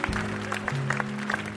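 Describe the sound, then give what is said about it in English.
A church audience claps together in a steady, dense patter as a clap offering of praise to the Lord, while a low sustained organ-like chord holds underneath, shifting pitch once partway through. “Come on, let's give a clap offering of praise to the Lord.”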